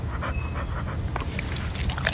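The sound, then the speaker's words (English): A dog named Vinny pants in quick, steady breaths, a rhythmic huffing that carries on for a couple of seconds with no talking. “I think that's the most inspiring thing I've ever heard from a dog.”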